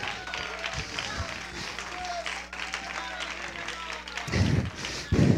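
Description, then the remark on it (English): A worship audience claps hands in praise to the Lord in a dense, sustained wash of applause, with voices mixed in and a couple of louder bursts of noise near the end. “Give the Lord a hand clap praise.”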